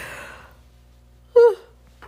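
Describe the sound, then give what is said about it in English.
A yawn: a breathy exhale trails off, then after a pause a short, loud voiced groan with a wavering pitch, with no talking. “Okay, sorry you guys, I just yawned too much.”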